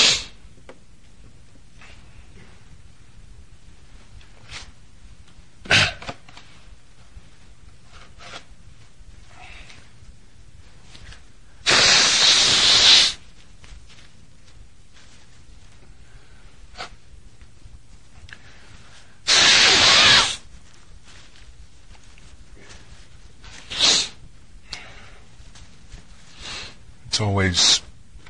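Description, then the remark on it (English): Two loud, honking nose blows as a person blows their nose in public, each about a second long and several seconds apart, against a quiet background with a few soft rustles and clicks. “It's always on my top 10 list of things I love to do. Blow my nose in public.”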